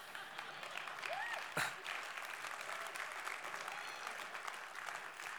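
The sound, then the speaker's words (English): Sustained audience applause, a dense, steady wash of many hands clapping at a fairly even loudness for several seconds, with a brief whoop or cheer rising early on. “Clap like you mean it.”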